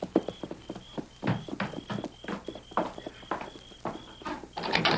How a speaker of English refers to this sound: Johnny's in his office, Kimosabe. You take the horses around and back.